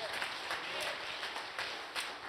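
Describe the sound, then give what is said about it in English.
An audience claps their hands to thank God, a dense, steady wash of many overlapping claps with no clear rhythm, holding at an even, fairly loud level throughout. “If you believe it, clap your hands and thank God for a God that's with us.”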